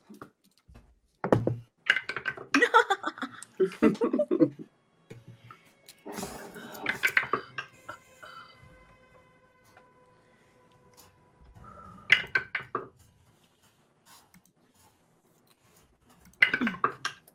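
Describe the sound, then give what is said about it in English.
Several separate bursts of dice clattering and tumbling across a hard table as players roll for initiative in a tabletop role-playing game, each rattle lasting a second or two with quiet pauses between throws. “So much rolling.”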